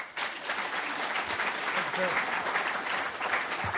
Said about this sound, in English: So today, we are excited to have two stalwarts among us, our current Dean of Engineering, Dean Sankar Sastry, and our distinguished guest, Professor Sridhar Kota. Please give a round of applause and welcome them.